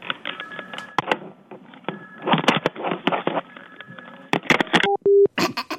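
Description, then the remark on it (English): A woman having trouble working a telephone fumbles and handles it with clattering knocks and rattles, then short electronic dial tones beep near the end before more handling noise. No one speaks. “She had some problem hitting the phone.”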